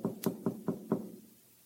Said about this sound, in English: But 5 o'clock in the morning, there was a knock on the door.